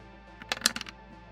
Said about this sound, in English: One of the dice just flew away. I don't. I can't see it.